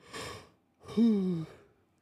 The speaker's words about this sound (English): Sorry for the yawns, my people.